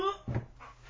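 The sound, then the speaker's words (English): A dog lets out a short whiny yelp followed by a single quick bark, fairly quiet, with a little low background noise trailing after. “There's not been fighting, has there? Because I'm hearing some barking.”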